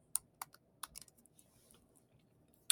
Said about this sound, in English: When you take a look at Pfizer, and if you hear my keyboard, it's just me looking at a chart.